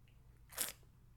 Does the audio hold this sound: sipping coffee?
yes